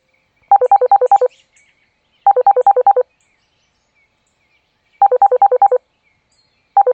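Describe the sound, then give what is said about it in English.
Touch-tone telephone dialing: rapid runs of about five or six crisp, mid-pitched beeps, repeated in four clusters separated by short silences, loud and with no voices. “I wanted to call you to let you know I'd gotten home safely.”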